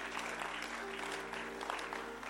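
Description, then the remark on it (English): Steady, dense clapping from a group at the back of the room, a continuous crackle of many hands that holds an even level throughout, with a low hum running underneath. “Oh, I thought you were clapping in the back there.”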